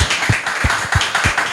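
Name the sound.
applause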